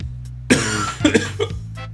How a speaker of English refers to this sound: Well, that was your answer to the question, was to have a coughing fit. So you're having some sort of health crisis, whereas I am comparatively okay.